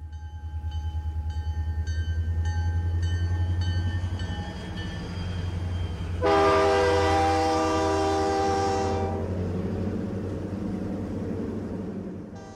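A train rumbles steadily along the rails, then a loud, sustained horn blast cuts in about halfway through and holds for several seconds before the rumble continues alone.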